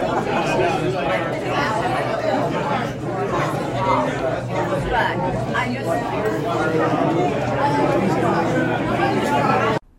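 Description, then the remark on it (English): Steady, dense crowd chatter at an art exhibit at the Arts Center's Yester House after the opening reception, many overlapping voices blending into a continuous murmur with no single speaker standing out, holding an even loudness for the whole stretch before cutting off abruptly. “Following the opening reception at the Arkell Pavilion, the crowd headed over to the Yester House to take it all in.”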